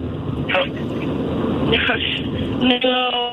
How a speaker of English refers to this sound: No, my car that's very loud.